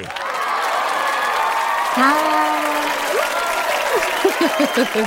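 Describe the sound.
A crowd breaks into sustained applause and cheering to welcome a Brooklyn-based comedian, writer and poet to the program, with whoops and shouted voices rising above the steady clapping throughout.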